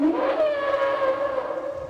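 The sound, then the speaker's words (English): A loud, elephant-like trumpeting call from a Brachiosaurus, a large long-necked movie dinosaur, swooping up briefly and then holding a long, steady, brassy tone for nearly two seconds, heard alone with no talking. “The Brachiosaur itself is trumpeting like an elephant, and he had definitely advised them against that.”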